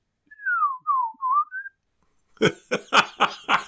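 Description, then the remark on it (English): A person whistles a brief, clear phrase of four sliding, wavering notes, then breaks into a short run of breathy laughter with about five quick bursts. “You could whistle whatever you want, but the key is you make the same sound every time. So this is what I'm trying to whistle.”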